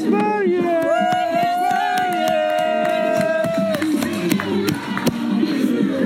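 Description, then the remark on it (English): A lively crowd of enthusiastic people across the street cheers and shouts continuously, with a sustained high whoop or yell rising above the babble for several seconds, plus scattered claps and voices throughout. “There's some very enthusiastic people across the street.”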